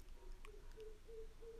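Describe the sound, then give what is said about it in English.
A pigeon on a roof coos softly in a low, repeated warble, several short hooting notes in a steady rhythm, faint, with no one talking. “That's a fucking pigeon. Chilling on our roof.”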